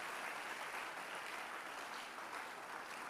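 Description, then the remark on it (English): An audience claps steadily for about three seconds, a dense wash of many hands without pause or speech, sounding soft. “Your clapping is in the house right now.”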